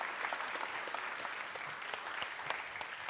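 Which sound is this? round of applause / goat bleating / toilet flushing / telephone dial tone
round of applause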